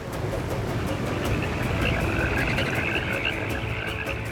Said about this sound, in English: This time, hundreds of thousands of frogs sprung forth from the water, their webbed feet carrying them outward like an invading army. Their ribbits shook the country, and they invaded Pharaoh's palace with speed and precision.